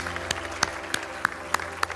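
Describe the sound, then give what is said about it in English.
An audience claps in a steady, even rhythm after a prayer, giving God a round of applause, with sharp, distinct claps roughly three per second over a soft background hum, moderately loud. “Come on, let's give God a round of applause.”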